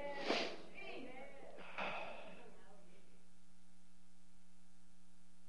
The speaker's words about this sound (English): Blow my nose break, sorry.